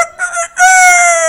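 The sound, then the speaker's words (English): A rooster crows loudly on a rainy day, a short rising note followed by a long sustained cock-a-doodle call, with no talking over it. “But the rooster don't care about the rain.”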